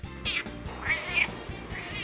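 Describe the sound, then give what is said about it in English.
A domestic cat meows several times in short, whiny bursts, fairly loud over a low, steady background rumble, with no talking. “And last meow, sample number three.”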